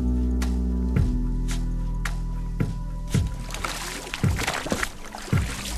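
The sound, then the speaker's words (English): A dragon boat crew of about 20 women paddling, with rhythmic splashing strokes in the water and low thumps roughly every second as someone on board beats a drum to keep the paddlers in time, with steady water noise underneath. “They take 20 women in the boat to paddle the boat”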